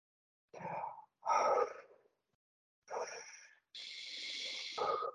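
A series of long, deep, audible breaths taken intentionally as a breathing exercise, one after another with short pauses, breathy and airy with sighing exhales, at moderate volume and no talking.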